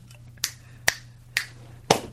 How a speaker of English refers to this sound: That was three snaps and a butt slap, I believe. You better believe it. Wow, that's a good way to ring in the new year.